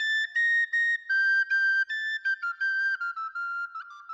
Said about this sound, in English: Hopefully, as you can hear, the recorder has a sparkling, bird-like quality to it, and there are several different kinds of recorders available to play. That recorder is a soprano recorder.